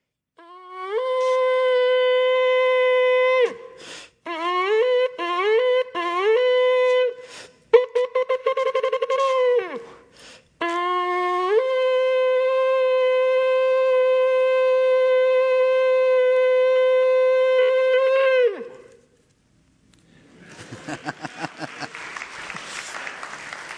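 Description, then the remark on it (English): Shofar blasts: a long, brassy sustained note, a run of short broken blasts with upward pitch bends, a rapid staccato flurry, then one long steady blast, followed by applause. “And the sound is, of all the priests along the top of the temple, the parapet, and the sound of the shofar echoing off the rocky valleys and all throughout, you're going to hear this.”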